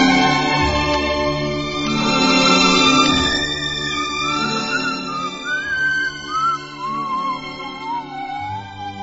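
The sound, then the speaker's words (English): A recorded tune with a whistled melody gliding and sliding over a full instrumental backing, steady and fairly loud throughout, with no one talking. “Welcome to another all-whistling episode of the Sunday Morning Hangover.”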